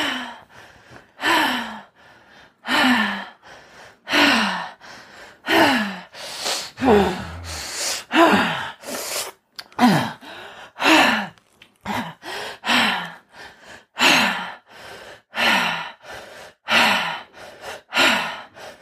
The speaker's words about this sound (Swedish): Men bara fortsätter andas. Djupa, fina andetag.